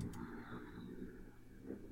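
vehicle, motorcycle passing by outside

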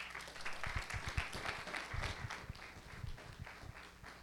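crowd, audience hand clapping

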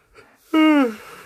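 human body sound, yawn

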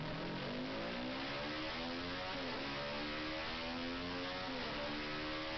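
vehicle, motorcycle engine revving

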